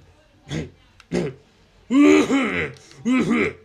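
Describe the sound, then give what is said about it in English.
A voice imitates a terrible coughing fit: two short dry coughs, then two longer, louder, rasping hacking bursts, with brief pauses between. “A terrible coughing fit.”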